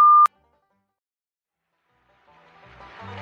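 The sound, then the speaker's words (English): A short, sharp answering machine beep sounds once, a steady electronic tone, followed by near silence and then a faint rising hiss of background noise. “Please leave a commercial after the beep.”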